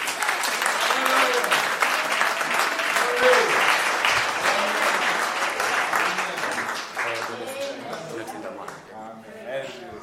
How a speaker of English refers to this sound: Amen. A round of applause. A round of applause, believer.